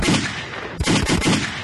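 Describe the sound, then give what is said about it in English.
A rapid burst of loud gunshot sound effects, several sharp cracks in quick succession over a dense, rumbling background, with no one speaking. “Sheep, gunshots to the sheep, bro.”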